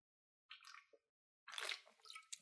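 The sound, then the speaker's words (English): Wet noises of someone drinking water: a short sip, then a longer, louder gulping slurp about a second later, with no talking. “Sorry, I had to take a drink of water.”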